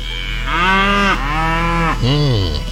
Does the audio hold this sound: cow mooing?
yes